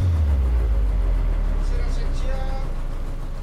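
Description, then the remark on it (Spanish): A water bus motorboat engine drones with a deep, steady rumble throughout, fading slightly toward the end as the boat slows and stops at a battered pier of worn wooden planks, with faint hiss above it. “La lancha autobús se detiene en un estropeado embarcadero de maderas gastadas”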